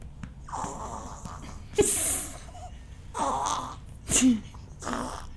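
A baby girl burping, with two short, sharp bursts rising out of breathy, snorting grunts and small fussy noises. No one speaks.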